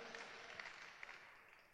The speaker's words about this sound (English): Can we clap for Ikoyi Baptist Church, first of all? Clap very well now. Let's clap for ourselves. If they will not clap for us, we should be able to do it. Hallelujah.